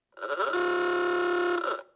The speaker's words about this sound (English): It's going to sound like a klaxon going off. Now, it's loud noise coming, okay? So don't have a heart attack. Hopefully this works.